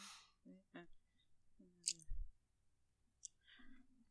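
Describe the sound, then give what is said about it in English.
A few sharp, isolated clicks of dice knocking together as 15 dice are counted, spaced irregularly, with soft murmured vocal sounds and a low thump in between. “That's a lot of fucking dice.”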